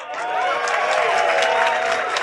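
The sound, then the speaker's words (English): A live audience claps and cheers steadily for a couple of seconds during the intro of an event celebrating the life and times of Alan Partridge. The applause is loud and sustained, with excited voices mixed into the noise. “We've left a short gap in the recording of this intro to allow for applause.”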